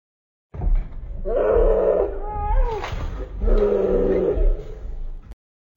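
A slowed-down human growl, deep and drawn out, in two long rumbling bursts with a wavering, moaning pitch that sounds like a large animal roar. No talking.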